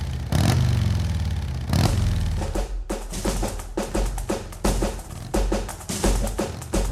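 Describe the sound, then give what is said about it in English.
Loud engines of a motorcycle club's bikes roar, with two big revving surges early on followed by a rapid, pulsing rumble as the motorcycles idle and rev; no one speaks. “You can't just swan over there and ask a motorcycle club if you borrow their bikes.”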